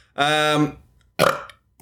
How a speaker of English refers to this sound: It's how you burped. It's like you got to clear your throat and your gut in order to speak. I got to dislodge the barnacles.